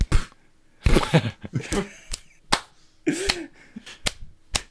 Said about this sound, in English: Keel starts slapping on the metagel, or sorry, the Bacta strips. Literally slapping.